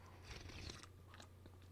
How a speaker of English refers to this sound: I'm going to have another sip of coffee. Hold on.